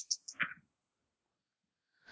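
Two dice are rolled for a logic check in a game, rattling and clacking briefly in a quick burst of small clicks, then after a short silence a single sharp knock.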